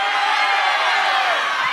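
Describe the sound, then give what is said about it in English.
A large live audience shouts their full names all at once on a count of three, a loud, steady roar of overlapping voices, no single word distinguishable, sustained for under two seconds. “So on the count of three, just yell your full name.”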